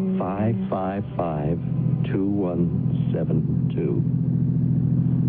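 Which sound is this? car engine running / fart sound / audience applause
car engine running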